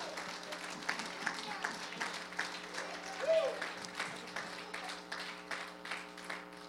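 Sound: audience clapping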